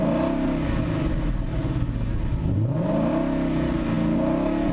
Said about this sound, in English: He starts to rev his car. Like, that doesn't do anything.